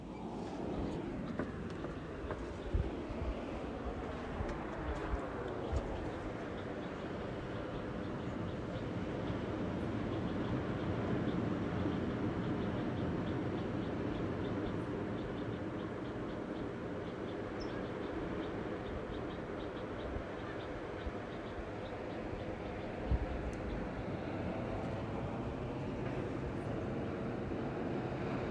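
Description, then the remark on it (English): Ocean waves wash in a steady, rumbling roar outdoors, swelling louder midway before easing back, with a touch of wind buffeting the microphone and no voices. “I'll step outside, listen to waves for a minute or so.”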